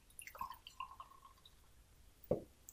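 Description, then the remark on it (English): Carlton Dry beer pours into a glass, heard as faint, quiet trickles and drips, with one sharper splash near the end. No one speaks. “Okay, so I'm pouring beer number one, which is a Carlton Dry.”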